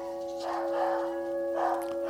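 dog barking at doorbell

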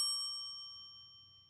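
bell ringing

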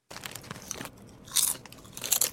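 crunchy food being chewed

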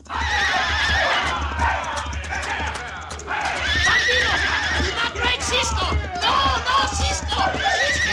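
horse whinnying and galloping

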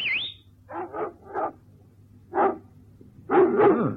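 dogs barking

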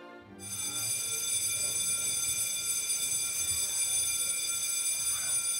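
bell ringing

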